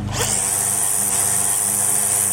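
A weed whacker revs up and runs steadily, a loud, harsh motor whine with a high buzzing edge and a low droning hum, continuous without pause and no talking.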